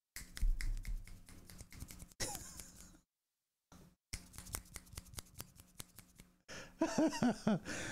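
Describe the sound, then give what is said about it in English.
Sharp finger snaps crackle in quick, uneven bursts, many overlapping, with a brief silent pause midway and a soft breathy vocal sound near the end. “She was waiting for the finger snaps.”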